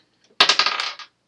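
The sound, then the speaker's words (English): A quick burst of sharp clattering as dice tumble and bounce across a hard tabletop during a tabletop role-playing game attack roll that comes up a critical hit, several rapid clicks settling within about half a second, fairly loud with no talking. “It's a critical. I need you to retire that dice when you're fighting against us.”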